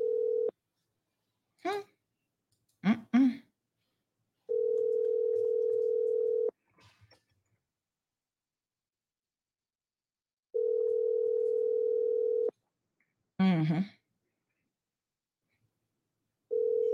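A telephone ringback tone repeats as a call is placed in the morning: steady, moderately loud two-second tones separated by roughly four-second silences, with brief bursts of voice in a couple of the gaps.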